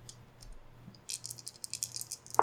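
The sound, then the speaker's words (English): Dice rattle and clatter across a hard surface in a quick burst of bright, clicky impacts, ending with a sharper knock as they settle. They are rolled for a dexterity check with advantage, and the roll comes up 11. No one speaks. “And since you have Way of the Nogri, go ahead and roll this as a dex with advantage.”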